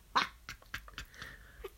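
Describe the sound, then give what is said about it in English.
A cat plays with a little toy: a series of sharp little clicks and rattling taps at an uneven pace, with a brief faint ringing tone partway through. “Which, I swear to God, what the fuck is the cat doing? He's playing with a little toy.”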